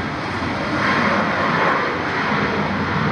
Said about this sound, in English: It's airplane.